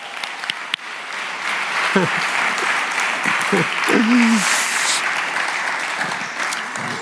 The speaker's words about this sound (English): All right, so everybody give them a big round of applause.